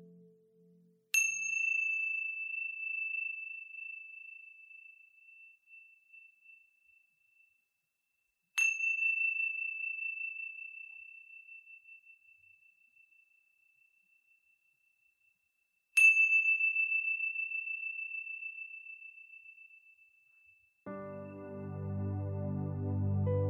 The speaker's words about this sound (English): Now, wiggling your fingers and wiggling your toes, when you hear the sounds of the chimes, gently coming back into this space.